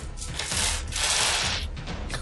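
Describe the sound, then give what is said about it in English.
A bag of dice is tipped out, releasing a dense, continuous clatter of many small pieces tumbling and rattling together for about two seconds, bright and hissy, with no one speaking. “That was me emptying my bag.”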